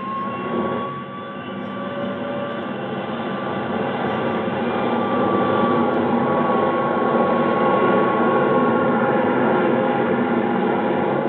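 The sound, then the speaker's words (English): An Air National Guard jet aircraft, cleared for takeoff, roars through its takeoff run at 9:29 p.m., a dense, steady engine rush with a faint whine on top, slowly growing louder over about eleven seconds with no voices. “You are airborne at 2129.”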